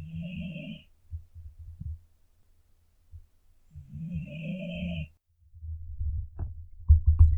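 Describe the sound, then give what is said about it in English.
Two long, raspy snoring breaths from a sleeping dog, a few seconds apart and soft, followed by low thumps and rustling as the mic is moved to pick up the snoring. “And also, the dogs fell asleep. I'm trying to move the mic to see if you hear them snoring.”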